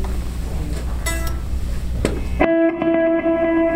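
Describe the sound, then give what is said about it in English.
An electric guitar through a stereo delay set to dotted-eighth and quarter-note repeats plus clean reverb builds a dense, washy wash of repeating echoes, then settles into sustained chiming notes that ring out and repeat rhythmically, fairly loud and with no talking. “So one's a dotted eighth and one's a quarter note. If I add the reverb into that.”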